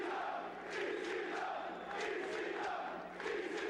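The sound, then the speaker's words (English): A large crowd at an ECW wrestling show in the Lost Battalion Hall in Queens, New York, roars and cheers continuously, a dense wash of voices with rhythmic swells and chant-like surges, loud and sustained with no single voice standing out. “This crowd is jacked, man.”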